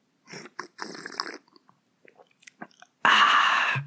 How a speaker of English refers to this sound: That was an extra loud sip. I apologize.